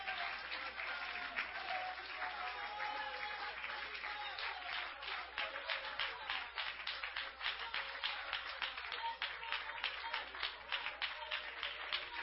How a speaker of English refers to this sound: Come on, let's stand together and clap our hands to the Lord.